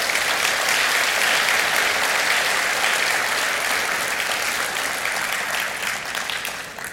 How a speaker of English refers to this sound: And I know many of you are in that same position right now, but you come anyway, and we really appreciate it. Thanks a lot. Let's give a round of applause to all those people.